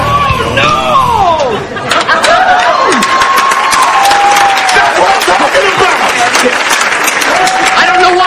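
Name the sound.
audience clapping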